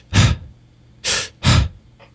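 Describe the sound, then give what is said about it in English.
A person demonstrates tense, stressed breathing that people learn through stress adaptation: three loud, sharp breaths, gasp-like and hurried, the last two in quick succession, then a faint trailing breath. No talking. “And what I find is, because of stress adaptation, and this is the key, stress adaptation, people learn to breathe like this.”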